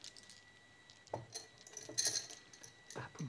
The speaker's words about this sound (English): I'm just going to get some dice. Let's see if he can do this. I have dice. Right, I've got some here.